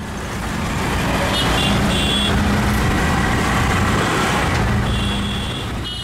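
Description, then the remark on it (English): Busy traffic in the crowded, hot streets of New Delhi, heard from a tuk-tuk, roars steadily, with low engine rumble and a dense wash of noise, while car horns blare in two bursts of overlapping honks, faint voices mixed into the din. “The driver was screaming at the sea of noise in the crowded streets.”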